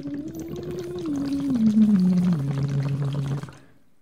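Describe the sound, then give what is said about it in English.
A muffled, warbling voice sings underwater, one sustained note gliding slowly downward in pitch, wrapped in steady bubbling and gurgling water noise, then cutting off abruptly after a few seconds. “I can't really hear myself very well because I'm being muffled through water, so I'm okay with it if I miss a couple notes, and it kind of frees you up.”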